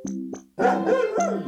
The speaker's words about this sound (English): My favorite part is the dog, my old faithful golden lab, Rufus T. Firefly. Yes, named after the Groucho Marx character in Duck Soup. The barks you'll hear are Rufus, barking up the wrong tree.